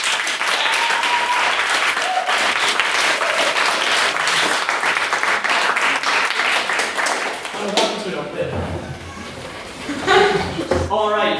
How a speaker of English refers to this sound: A round of applause again